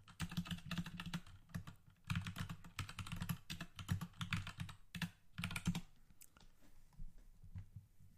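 Rapid keyboard typing very close to the microphone, a dense run of clacking keystrokes in uneven bursts with brief pauses, loud and unaccompanied by talking.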